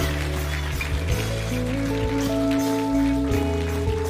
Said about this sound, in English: Could we celebrate with everybody who's prayed that prayer right there? Come on, church, a big applause.